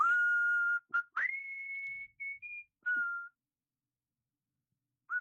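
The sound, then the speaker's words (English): A person whistles a short tune, with sustained clear tones stepping between a few pitches, then a final brief note after a pause. “I know that song, and I know that part, that last couple sentences is really, like, bothering me. I'll whistle it.”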